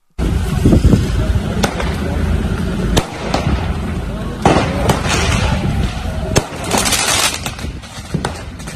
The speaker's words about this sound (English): we can hear first some of the sounds of last night's disturbances on the streets of Belfast as PSNI units came under attack from fireworks thrown at them at Lanark Way.